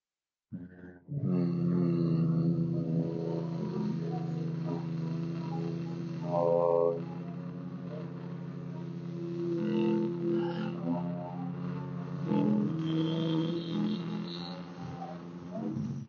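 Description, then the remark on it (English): A group hums with closed mouths as part of a breathing exercise, fingers placed just below the ears: a steady low droning tone that holds for about fifteen seconds with slight wavering shifts in pitch and no talking over it. “And then the next time we breathe in, we're just going to start humming to ourselves.”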